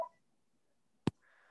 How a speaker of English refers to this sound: That landline ringing off the hook, man. Ringing off the hook.